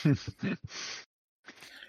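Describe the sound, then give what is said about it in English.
A single sneeze: a short voiced build-up of catching breaths, then a loud, hissing burst, followed after a brief pause by a softer breathy exhale. “pardon me. Bless you.”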